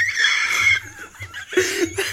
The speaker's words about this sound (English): That was a machine gun fart, bro. And it was in rhythm with your, like, laughing, too.